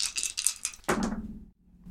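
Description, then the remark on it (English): Two dice, rolled for a battle action in a Forged in the Dark game, rattle with a quick run of bright clicks, then clatter down in one sharp, loud knock that rings briefly and fades, followed by quiet. “Two dice for battle.”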